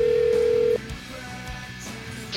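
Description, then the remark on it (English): A steady telephone tone hums for under a second, then cuts off, followed by a few quiet, scattered clicks and blips of keys being pressed on a phone as a number is dialed to call a guest onto a radio show. No one speaks. “Yeah, let me dial it up old school radio style on the phone.”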